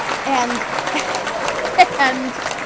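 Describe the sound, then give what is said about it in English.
A burst of clapping from a small crowd, a steady patter of hands lasting a couple of seconds, with voices calling out faintly underneath. “Yeah, you had to clap.”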